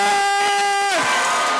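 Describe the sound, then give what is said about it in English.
A loud audience cheers continuously as a performer is introduced, while one sustained, piercing whoop holds a steady pitch for about a second, then slides downward into the roar of the crowd. “I need y'all to make some noise. I mean some real noise for my road dog,”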